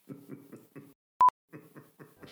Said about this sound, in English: Hide it in your significant other's, whether it be car, office, bedroom, bathroom, whatever you like. This thing will beep at random once an hour, every hour for the next 3 years.